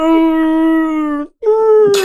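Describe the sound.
A voice imitates a whale's moan with two long, steady, low-pitched tones: the first holds for over a second, then after a brief break a second, slightly falling tone ends in a breathy rush.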